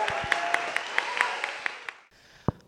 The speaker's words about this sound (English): Another round of applause for your brilliant celebration.